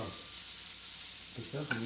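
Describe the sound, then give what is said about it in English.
Sausage sizzling in a pan as it fries until its edges brown and turn crispy: a steady, bright hiss of frying fat runs throughout, with a few brief tonal clinks or squeaks near the end. “After about 10, maybe 15 minutes, after the edges of the sausage had browned and turned crispy, he deemed it ready.”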